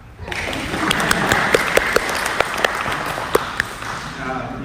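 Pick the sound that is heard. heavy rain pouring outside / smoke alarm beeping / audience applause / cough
audience applause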